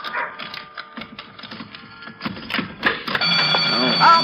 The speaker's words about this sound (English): Oh, I always forget that burglar alarm. Here, let me get my other key and turn that thing off.